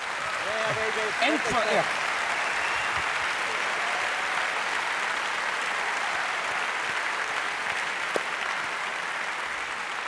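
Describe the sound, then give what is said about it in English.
An audience at the close of an evening event at South Bank claps steadily for about ten seconds, a dense, even wash of applause. A voice speaks briefly over it at the start, then the clapping carries on alone. “So and a big applause.”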